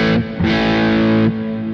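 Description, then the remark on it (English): A heavily distorted electric guitar, set with gain at 3.5, EQ in the middle and definition at 4.6, plays two sustained chords through a natural reverb; the second rings out longer before cutting off, with the reverb tail lingering briefly afterward. Loud, no voices. “And then I started with a natural reverb. You hear it?”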